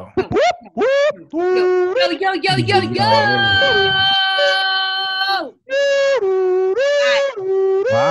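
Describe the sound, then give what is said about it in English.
A voice loudly imitates an ambulance siren, wailing up and down, then holding a long high note before switching to a two-tone hi-lo pattern. “I live on Grand Concourse and I hear that every day, all day. The ambulance, bro.”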